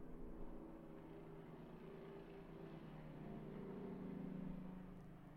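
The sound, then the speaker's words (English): Helicopters fly overhead outside, a continuous low mechanical drone that swells slightly louder near the end before easing, with no voices present. “The helicopters have been bad today.”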